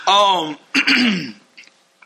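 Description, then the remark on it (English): A person coughs and clears their throat: a loud, voiced hack followed by a second rougher cough, then a couple of faint clicks. “Sorry. I can't stop coughing.”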